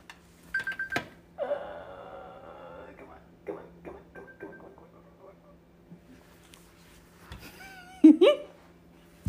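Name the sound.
phone alarm going off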